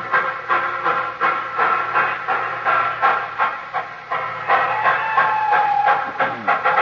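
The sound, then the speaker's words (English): A steam train at a station with a crowd at Christmas time chuffs in a steady rhythm with loud hissing bursts, wheels clattering beneath, and a brief whistle-like tone rising toward the end; no one speaks. “Well, you know, that was a jolly happy crowd there at the station, wasn't it?”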